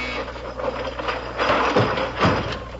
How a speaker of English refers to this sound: Well, I'll be. The furniture went right back into the wall. Yeah, and your mother was in one of the chairs.